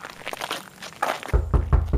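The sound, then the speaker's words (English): Soft crinkling and shuffling give way to a quick series of about four solid, low knocks on a door, evenly spaced and fairly loud, as Joseph and Mary knock on doors in Bethlehem asking for a room. “They continue knocking on doors and asking for a room, but each time, they are turned away.”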